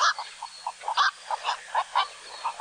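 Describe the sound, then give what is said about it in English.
Loud, hoarse squawking calls of a black-crowned night heron, repeated rapidly in a rough, uneven series of short barking notes, clear with no voices. “These graceful, broad-winged water birds can often be seen in flight in the mornings and evenings, which is also the best time to hear their loud, hoarse call.”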